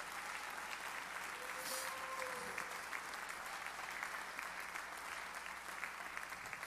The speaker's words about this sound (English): Give him one more good hand clap of praise. Can you do it this morning?